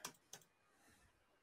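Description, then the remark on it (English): Two crisp mouse clicks on a computer's live button, a fraction of a second apart, each a short sharp tick, followed by faint hiss with no talking. “Clicking on the live button.”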